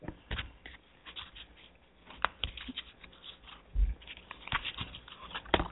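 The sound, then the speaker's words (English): A deck of cards being shuffled before cards are pulled for a card reading, with soft, irregular riffling and papery flicks broken by a few sharper taps. Quiet throughout, and no one speaks. “And I'm just shuffling the cards, asking the angels for support and guidance around us.”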